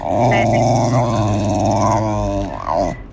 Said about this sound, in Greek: Εγώ θα έλεγα ότι είναι σκυλή.